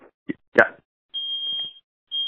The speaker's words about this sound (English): So, Oh, hey, man. You've got a smoke alarm going off.